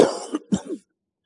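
A quick throat clearing in a few rough bursts, a harsh rasp followed by two shorter guttural pulses, then silence. No talking is heard.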